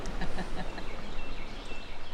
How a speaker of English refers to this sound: Now I'm hearing that alarm note of the wood thrush. Hear that? Yeah. So that is an upset wood thrush.